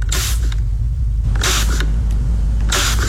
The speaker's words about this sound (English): It is a spray bottle.